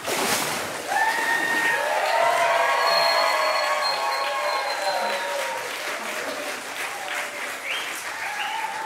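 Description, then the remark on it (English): A church audience claps and cheers steadily for several seconds after a baptism, a dense wash of applause with whoops and raised voices layered on top, loud throughout. “You can cheer again if you want.”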